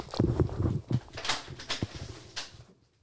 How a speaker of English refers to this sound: Oh, we got someone pounding down the door again.